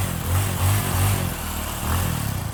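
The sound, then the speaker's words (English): A motorcycle engine revs in several loud bursts, its low throaty rumble rising and falling in a rough rhythm with no voices present. “We're not taking a motorcycle.”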